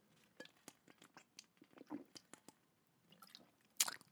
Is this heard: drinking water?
yes